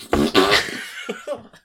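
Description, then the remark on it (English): A loud, buzzy fart sputters in two quick bursts, then trails off into a few faint, scattered chuckles. “I found that fart and I highlighted it so you could hear it.”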